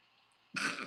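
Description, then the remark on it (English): A single sudden sneeze bursts out after a short stretch of near silence, loud, breathy and noisy across the whole range, holding briefly before tapering off. “Bless you.”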